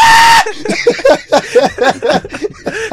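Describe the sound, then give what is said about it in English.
A loud, piercing scream bursts out for a split second at the start, cut off abruptly, then a person starts talking at normal volume. “screaming in the closet”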